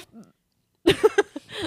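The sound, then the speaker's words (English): After a near-silent stretch, a fairly loud burst of four or five quick, throaty coughs comes in rapid succession, each one short and voiced, ending in a breathy trail. “I wasn't laughing. I was coughing.”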